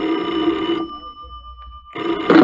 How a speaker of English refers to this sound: At 11, the phone rang.